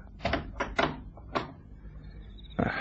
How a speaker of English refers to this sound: Open the door to the garden, Joe.